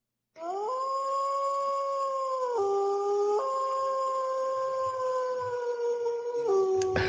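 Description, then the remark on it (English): A single wolf howls in one long, sustained wail of about seven seconds, the pitch stepping down and up in a few places before settling lower near the end, loud and clear with no talking. “Was that a wolf? Wolf.”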